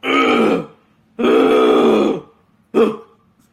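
A person loudly clears their throat up close in three rough, voiced bursts: two longer rasping pushes, then one short final one, with no talking.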